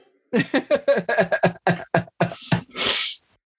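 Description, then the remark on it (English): A quick run of short, voiced vocal bursts, then one loud sniffle, a sharp breathy snort of air through the nose from someone with a cold caught in cold weather. “As we're sniffling like crazy here from this fucking cold weather.”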